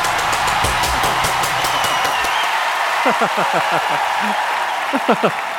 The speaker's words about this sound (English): Come on, church, this is our what we do usually when a guest speaker comes. We stand up and we welcome him with standing ovation and a huge applause.